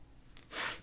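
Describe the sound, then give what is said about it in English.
A quick, faint intake of air followed by one longer, stronger nasal sniff as a person tries to clear a blocked nostril, airy, with no talking. “I think one of my nostrils is out. One of mine is, too. And I was just trying to clear it a little bit.”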